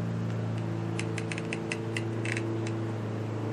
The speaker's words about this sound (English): I'm outside in my backyard because it is such a beautiful day. So there's some people mowing their grass. I can't help it. So forgive me if you hear that.